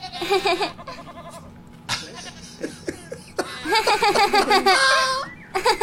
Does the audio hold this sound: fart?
no